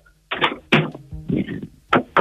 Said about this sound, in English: Knock on the door / doorbell. Give us a knock on the door.